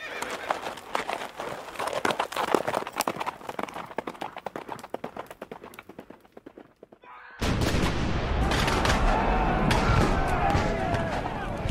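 Horse hooves gallop in a fast, steady rhythm for several seconds, then a sudden loud wall of dense battle-like noise with sharp cracks takes over and continues to the end.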